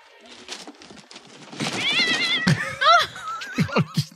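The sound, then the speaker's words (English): A cat inside a wrapped box meows a few times in quick succession, its wavering cries rising and falling over a faint background of low murmuring and soft knocks. “This box is meowing.”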